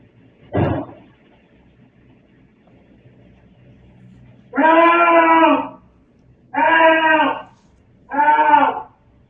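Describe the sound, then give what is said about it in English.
In an apartment, starting with the click of the outside door as a man leaves, a single dull thud, a pound, is followed after a few seconds of quiet by three long, low moaning cries for help, drawn-out and tonal, repeated at a steady pace with short gaps between them. No one speaks. “And then there's a pound and then a low moaning cry of help multiple times.”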